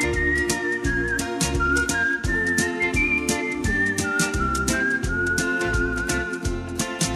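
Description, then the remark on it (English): A person whistles a bright, wavering melody over a lively band tune with steady bass and percussion. The whistling is clear and sits on top of the music throughout. “Well, since I don't dance, I'll just sit here and whistle along to the tune.”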